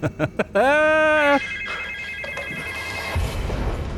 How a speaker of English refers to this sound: Phones will ring. Oh no, not the phones.